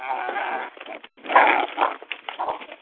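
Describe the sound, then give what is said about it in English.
Dogs bark and yelp as they attack a pig that went after their dog food, a noisy tangle with squealing cries mixed in and bursts of scuffling over about three seconds, no talking. “There's your daily pig, except now my dogs are attacking him.”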